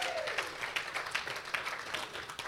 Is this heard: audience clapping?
yes